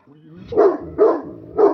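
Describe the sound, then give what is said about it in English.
A dog, Ronnie James Dog, barks three times in fairly quick succession, sharp, with a low murmur of voices running underneath, while burrowing in his blanket fort where he found a bone. “What is the dog doing over there?”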